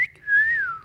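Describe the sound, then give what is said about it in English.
A woman whistles a brief, clear note, copying a whistle; the note holds steady and then slides gently downward, with no talking over it. “She's copying the whistle.”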